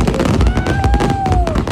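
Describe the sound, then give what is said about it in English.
Fireworks capping off a night's celebration go off in a rapid, crackling barrage of sharp pops, with a long whistling streak gliding through the middle. Loud, with no one speaking. “Nicole's hubby Joel Madden and his bro Benji, who brought wife Cameron Diaz, posed with Lionel before fireworks capped off the night.”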